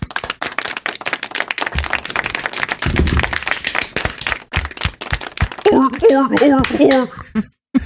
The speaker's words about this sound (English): Seal claps, baby.